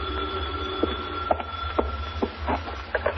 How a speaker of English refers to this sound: I'm grabbing a fast shave when the phone starts jangling.